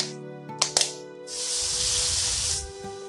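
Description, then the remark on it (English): Two quick metallic clinks, then water hits a hot skillet and bursts into a loud, steady sizzling hiss that lasts just over a second before cutting off. No one speaks. “I mean, I'm going to add some water.”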